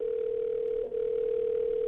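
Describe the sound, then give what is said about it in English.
A steady, unbroken telephone dial tone of an outgoing call to Toronto hums at a single mid pitch, holding evenly for about two seconds with only a tiny dip partway through. No one speaks. “I called John Barber in Toronto.”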